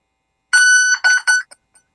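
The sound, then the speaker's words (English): A beep baseball, a 16-inch Chicago-style softball with electronics inside, emits loud electronic beeping: one long steady tone followed by two shorter beeps and a couple of faint quick blips, with no voices. “So that's the sound that the beat baseball makes.”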